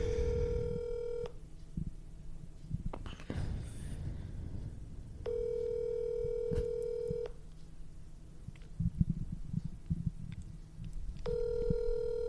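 A phone line rings out with a steady electronic tone, repeating three times in long pulses separated by pauses, over a low rumble of background noise and handling sounds.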